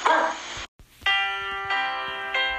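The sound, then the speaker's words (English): A single loud, harsh bark from a dog named Boo-Boo, followed after a brief pause by three bright, sustained ringing tones, like a bell or chime struck in succession. “Good dog.”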